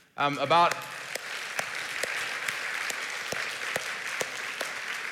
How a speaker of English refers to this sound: Y'all don't know how loud we want to clap for this.